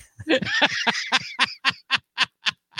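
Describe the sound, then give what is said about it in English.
Loud crunching of a hard lollipop: about a dozen sharp, brittle bites in a steady rhythm, dense at first and then spaced evenly, with no talking. “That crunch, it's distinct. Wait, is that potato or is that lollipop? Nope. That's lollipop.”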